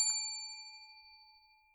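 A single bright bell ding rings out clearly and decays smoothly over nearly two seconds, its metallic tone lingering with no other sounds around it.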